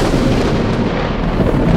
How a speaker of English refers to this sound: There was a bright flash of blue-white light, a rush of wind, and a sound like a thunderclap.